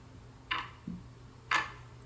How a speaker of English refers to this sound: By now, the ticking grew painfully loud. It seemed like the clock was screaming for me.